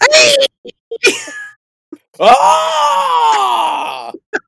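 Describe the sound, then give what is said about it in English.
Someone imitates the big high-pitched scream of wrestler Brock Lesnar: a couple of short strained yelps and grunts, then one long, loud, wavering squeal held for about two seconds before cutting off. “It's like, yeah, that big old monster of a man, that high-pitched squeal that comes out when he gets really excited.”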